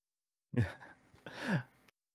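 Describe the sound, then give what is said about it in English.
Two sneezes in quick succession, each a sudden breathy burst with a voiced, falling tone, the second slightly longer; moderately loud, with no talking around them. The pollen count is high where they happen. “Sneeze.”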